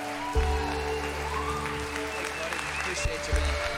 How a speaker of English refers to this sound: Awesome. Can we give Jesus another big hand clap? Just thank God for being here.